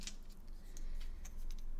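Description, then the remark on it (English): A coin that came with a set of dice being tossed: a few short, light metallic clicks and pings spaced irregularly over a second or two, quiet, with no voices. “We are going to toss a coin, since Apis's synapses cannot decide which to do.”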